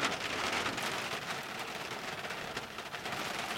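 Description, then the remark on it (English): Steady rain falls without pause, a dense hiss of drops pattering on a surface. No voices, just the constant wash of the downpour. “I'm hoping to get down the allotment tomorrow if this rain holds off.”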